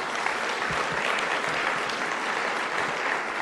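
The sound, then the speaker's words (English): A crowd applauds the Attorney General, Doug Downey, steadily, a dense wash of many hands clapping at an even, sustained loudness for several seconds with no voices standing out. “And by, yes, let's clap for the Attorney General.”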